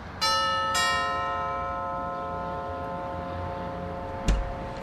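doorbell ringing

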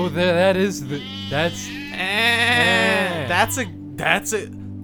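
goat bleating

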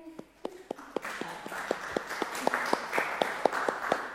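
group clapping

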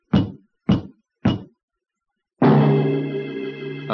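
knocking on a door

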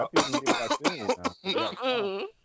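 coughing fit

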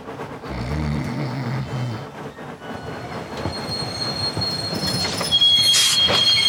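train running on rails

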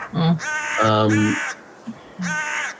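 crows cawing

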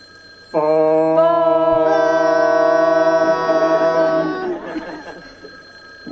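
telephone ringing

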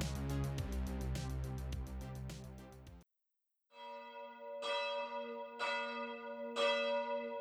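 church bells ringing

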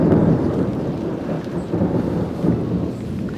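thunderstorm with rumbling thunder

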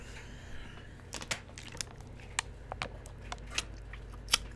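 drinking water

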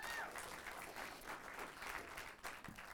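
audience clapping

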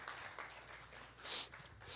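audience applause

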